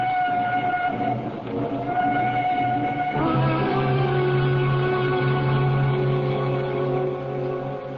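A train runs steadily along the rails, loud, its continuous rumble layered with sustained humming tones that shift partway through; no voices are heard.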